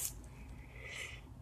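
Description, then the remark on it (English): A soft, breathy yawn, a drawn-out airy exhale swelling slightly toward the end, with no talking. “I don't know why I'm yawning so much, because I usually don't yawn as much.”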